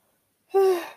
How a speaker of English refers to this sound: I keep yawning. I'm so sorry. I'm really tired, I guess,